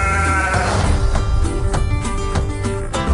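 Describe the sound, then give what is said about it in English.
Several sheep bleat loudly, their wavering calls overlapping almost continuously with no one talking. “Smells like sheep.”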